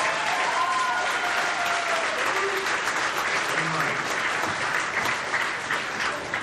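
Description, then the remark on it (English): A crowd breaks into sustained, steady applause for an audience member serving in the army, a dense wash of clapping hands that stays loud and even for several seconds without any talking over it. “How about a hand around?”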